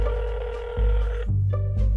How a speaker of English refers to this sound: And then, for Bradley and Jennifer's benefit, well, I suppose mostly for his own benefit, Dante picked up the phone and started dialing.